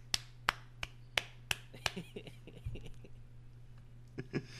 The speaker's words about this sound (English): 8-8, coach clap.